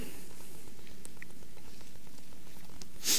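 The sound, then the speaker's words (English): Soft, scattered rustling of many Bible pages being turned as people look up Mark chapter 10, with faint crinkles throughout and one louder page flip at the very end. No one speaks. “Still hear some pages turning.”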